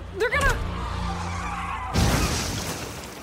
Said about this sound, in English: Skidding to safety, the wheelman guns it. The engine roars to life, and the truck peels out.